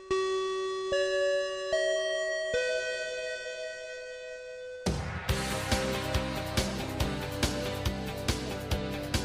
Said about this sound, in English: That bell means this meeting of the After School Anime Club has come to a close